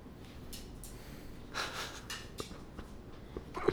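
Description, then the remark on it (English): A dog snorts and pants, with bursts of breathy, wheezing exhalations and a few short snuffles over a quiet background, no talking. “He's a good dog.”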